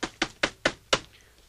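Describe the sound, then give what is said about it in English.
Five sharp knocks on a door tapped out in a quick rhythmic pattern, the last slightly delayed, followed by a brief quiet pause with no voices. “Okay, I just have to go and knock on the door.”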